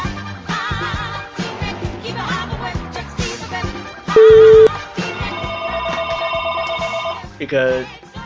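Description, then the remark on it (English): A cordless telephone rings with a sustained electronic trill for about two seconds, preceded by a short steady beep, while people talk before and after it, fairly loud. “I've even got the cordless phone in here, so Jody couldn't pick it up even if it wasn't a telephone”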